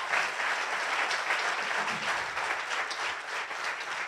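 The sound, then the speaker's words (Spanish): Sustained applause from an audience, offered to God for the life of the pastor, a dense, steady wash of many hands clapping at once for about four seconds, fairly loud and even throughout with no talking over it. “¿Por qué no le damos un aplauso a Dios por la vida del pastor?”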